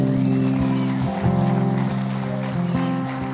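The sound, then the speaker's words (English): Audience applause during a morning gathering in a building, a dense steady patter of many hands, mixed with sustained, droning musical chords that hold throughout at a fairly loud level. “Yeah, you can clap, man.”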